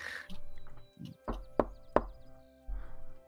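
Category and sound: household object, knocking on a door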